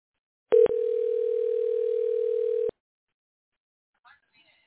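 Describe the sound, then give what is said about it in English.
A steady telephone dial tone hums for about two seconds after a short click as a radio DJ places a call during a live radio show, then cuts off, followed by silence and a faint brief rustle. “Let's get her up here on the phone right now.”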